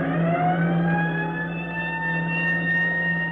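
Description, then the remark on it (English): A loud siren on the roof of a firehouse roars continuously, its droning wail slowly rising in pitch as a fire warning calling out volunteer firemen, with no voices over it. “As the siren on the roof of the firehouse roars its warning, volunteer firemen all over the district drop whatever they're doing, wherever they are, check with the phone operator for the location of the fire”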